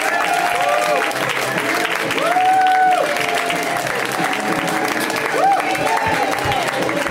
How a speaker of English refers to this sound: Just keep clapping because y'all are staring at me and shit. Keep it right there. That's where I like it.